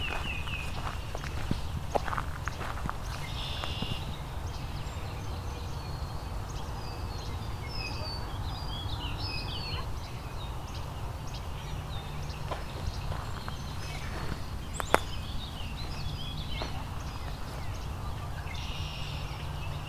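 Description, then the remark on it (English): A Tennessee warbler sings a series of quick, high chipping notes, repeating in bursts over steady outdoor background noise, with footsteps crunching along. “There's a Tennessee warbler again.”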